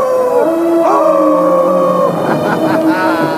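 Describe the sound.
Joe Flaherty as Count Floyd, a vampire character on Monster Chiller Horror Theater, lets out a loud, drawn-out wolf-like howl with rising and falling wavering pitch over a few seconds and no other talk.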